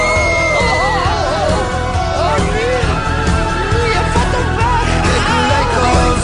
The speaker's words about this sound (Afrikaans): En daar kom 'n monster uit. Met dooie oë, 'n dooie vel en 'n onversorgde voorkoms. En hy gil.